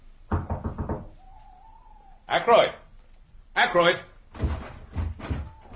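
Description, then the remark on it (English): A quick burst of about six sharp, loud knocks on a locked wooden door, followed by a man calling out urgently several times to be let in, with further knocking-like bursts between his shouts. “The door's locked.”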